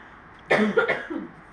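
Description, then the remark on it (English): A single harsh cough bursts out, followed by a shorter rasping follow-up cough, with no talking around it. “I'll cut all of those coughs out, hopefully.”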